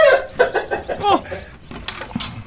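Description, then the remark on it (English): Chickens, including young ones not yet full grown, cluck in a quick, busy run of short nasal calls, fairly loud, thinning out into a few scattered clucks toward the end. “You like chicken?”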